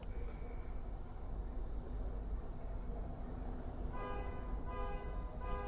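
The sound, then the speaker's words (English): A car horn blares out in a sustained honk during the last couple of seconds, rising over a steady, rumbling bed of engine and road noise. No one speaks. “Honk.”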